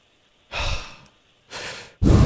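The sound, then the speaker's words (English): Deep, forceful breaths of a pre-show breathing exercise before singing, three in quick succession with short pauses between, each a loud rushing whoosh of air, the last one cut off abruptly. No talking. “I have to do my pre-show breathing.”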